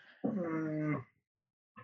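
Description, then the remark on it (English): A female dog, being attacked, gives a drawn-out, whiny growling whimper lasting under a second, fairly loud, then goes quiet before a brief short yelp-like sound at the end. “Sorry, the dog's just rambling and now being attacked.”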